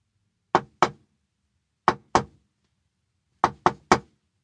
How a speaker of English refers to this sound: The knocking only grew louder.